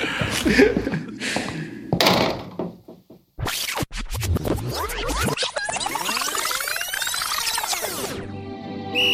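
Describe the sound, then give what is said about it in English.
Folding chairs are being set up in rows to seat a whole high school: a busy run of clattering knocks, thuds and a sharp bang, then a long grinding scrape as chairs are dragged into place, fairly loud. “All right, let's get those folding chairs in a row, please.”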